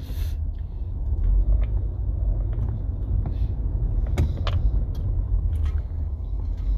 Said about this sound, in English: This traffic's gonna make me late for my appointment.